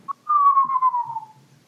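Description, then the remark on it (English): A person whistles: a quick short chirp, then one long, steady note that slowly slides downward and fades out, clear with no talking over it. “That's the first time that your whistle has been appropriate”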